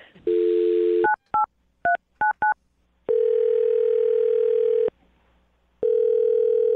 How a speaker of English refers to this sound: I'm going to dial his phone number right now and see if we can find out why he's not calling you back, okay? Okay. All right, here we go.